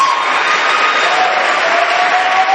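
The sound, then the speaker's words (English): An audience claps their hands for Jesus in a dense, steady wash of many claps that blends into a loud, continuous roar, with a faint high cheer running through it. “You want to clap your hands for Jesus?”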